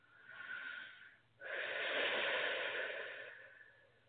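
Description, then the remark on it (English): Two long, deep breaths: a slow, airy inhale, a brief pause, then a fuller, louder breath with a slightly wheezy, rushing texture. No speech. “FYI, I do a lot of deep breathing to help move the energies, the treatments along.”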